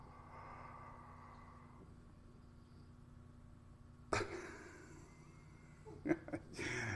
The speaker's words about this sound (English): When I yawn, he would yawn. Let's see if he does it. Ready? Look at Daddy.